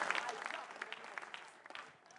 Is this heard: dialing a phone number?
no